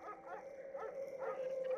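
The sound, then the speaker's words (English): A few short dog barks from hunters in a forest break through a steady, whining tone, coming in quick bursts at moderate volume over a low background hum, with no one speaking. “The only sounds punctuating the forest's forlorn melody were her ragged breathing and short barks from the nearby hunters.”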